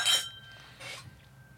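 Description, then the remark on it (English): Glasses of Lipton blended tea whiskey clink together in a toast, a bright ringing chime at the start followed by a softer second tap, fairly quiet with no voices. “All right. Cheers. Cheers. Cheers.”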